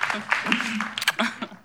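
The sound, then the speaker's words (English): A short burst of audience applause as the speaker's wife is invited up to join him, scattered claps rising and falling over under two seconds, with murmuring voices mixed in underneath. “Worth clapping, absolutely.”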